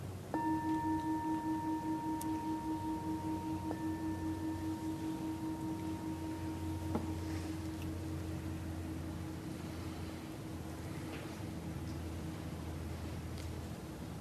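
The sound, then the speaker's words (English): A meditation bell is struck to end a sitting, and its clear, ringing tone hangs in the air for several seconds, slowly fading over a steady background hiss. No one speaks. “And then to end this sitting, you can open your eyes and I'll ring the ending bell.”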